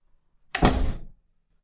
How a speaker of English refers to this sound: Shut the door, Frenchie.